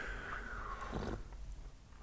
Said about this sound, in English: Hopefully those slurping sounds aren't annoying. I can imagine they're probably not all too pleasant, so we'll try to keep that down to a minimum.